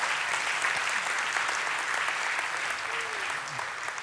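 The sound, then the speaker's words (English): An audience in a church applauds steadily, giving the Lord a round of applause: a dense, even wash of many hands clapping that holds at constant loudness throughout, with a brief faint vocal cheer rising from the crowd near the end. “Give the Lord another round of applause.”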